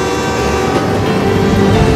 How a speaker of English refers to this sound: Oh! Mister, there's a train coming!